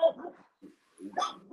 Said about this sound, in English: What is that? My dog.